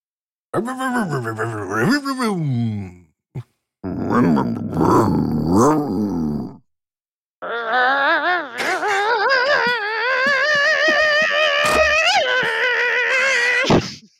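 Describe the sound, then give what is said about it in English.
Several voices take turns imitating revving racing car engines: a wobbling, rising-and-falling vroom, then a gruffer rumbling one, then a long buzzing high-pitched engine whine that climbs and sustains, all loud with short pauses between. “Now, I think in honor of him, we should all one by one do a car sound.”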